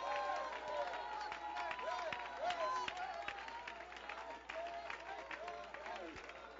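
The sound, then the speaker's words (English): A church audience claps hands steadily and continuously in praise to God, a dense patter of overlapping claps, while raised voices call out, shout and cheer over the clapping throughout. “I hear hand clapping, but somebody shout.”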